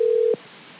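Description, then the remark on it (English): A short, steady electronic telephone tone sounds for about a third of a second and then cuts off abruptly, leaving near silence as a call is placed. “Ladies and gentlemen, let's see if we can get on the phone”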